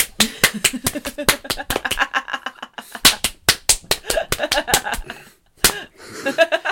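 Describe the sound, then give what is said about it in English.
Rapid, sharp slapping sounds repeat in quick bursts, loud, with a brief pause before another volley, followed by faint laughter-like sounds near the end; a person demonstrating someone being slapped repeatedly. “The figure walks up to him and just slaps the shit out of him repeatedly.”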